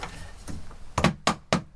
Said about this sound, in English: So she knocks on the window? Uh-huh, with a stick. And then the cranker starts cranking? Exactly. I tap on the organ house window with a stick.